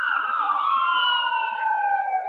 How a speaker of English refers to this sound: Somebody about to die. That's all it is. At least they only got the sirens on. That's good. When they cut the sirens off, that means, no need to rush. He already gone.